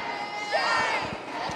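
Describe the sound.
A crowd screams and cheers in a hallway as State Representative Gloria Johnson and other lawmakers walk by: a dense, steady wash of many overlapping voices, with higher shrieks and shouts rising above the roar, loud throughout.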